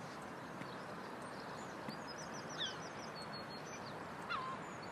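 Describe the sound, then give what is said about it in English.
Seagulls call from overhead, a few short cries against steady outdoor wind noise, with faint chattering calls scattered throughout and two clearer squawks near the end. “Oh, there's loads of seagulls up there.”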